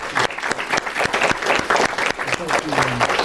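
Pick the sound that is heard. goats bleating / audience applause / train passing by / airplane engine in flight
audience applause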